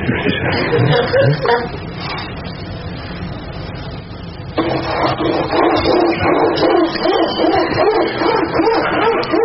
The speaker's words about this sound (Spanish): Ay, el perro.